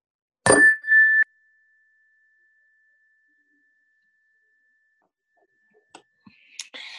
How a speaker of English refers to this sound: We'll begin the meditation with the ring of the chime and end the meditation with the ring of the chime. So let's begin.